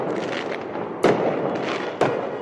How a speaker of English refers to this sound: Some in the crowd last night set off fireworks.